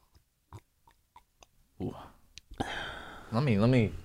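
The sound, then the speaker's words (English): Wet slurping of water from a home fridge: a few soft clicks followed by noisy sucking gulps, then a louder drawn-out slurp that ends in a wavering, satisfied vocal sigh. “So you got that good slurp.”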